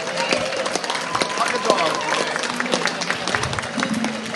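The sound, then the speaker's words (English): A crowd claps steadily, a dense crackle of many hands that holds at an even level for the whole stretch, with murmuring voices and a few cheers mixed underneath. “And actually, one of the things that I was really touched by when I came into this environment just yesterday was our furry little friends, who I'm sure have had a long and difficult week, and I think they all deserve a heartfelt round of applause.”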